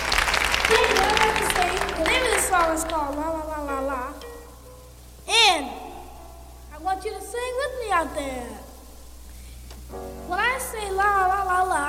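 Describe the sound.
Audience applause and cheering at a live concert recorded in 1962 rise at the opening and fade within a couple of seconds, while a man's animated, sing-song voice carries on over the crowd noise and dominates the rest.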